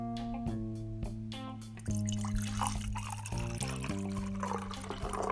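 Water is gulped right beside the microphone as a quick ASMR segment, a close, continuous gurgling with resonant, shifting tones for several seconds. No one speaks over it.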